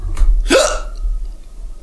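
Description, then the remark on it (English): A single sharp hiccup, a sudden breathy gulp with a brief voiced catch, preceded by a faint airy breath, then quiet room noise. “I've gotten rid of my hiccups.”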